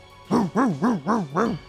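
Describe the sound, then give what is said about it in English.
A pit bull circling barks four times in a quick, even rhythm, each bark a loud, tonal yelp that rises and falls in pitch, with no voices around it. “The pit bull circles Rex.”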